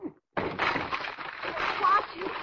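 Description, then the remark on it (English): A locked and bolted door is kicked down: after a short knock and a brief pause, a heavy crash of splintering, cracking wood rolls into about two seconds of loud, rough clattering and debris. “Whoever it was locked and bolted this door, I'll have to kick it down.”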